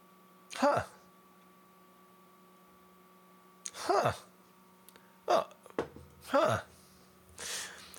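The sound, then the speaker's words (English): Several short, breathy sniffs at irregular intervals of a glass of opaque bright yellow beer, with a low steady hum underneath and no talking. “It's really enticing me to drink it, but I'm going to sniff it first.”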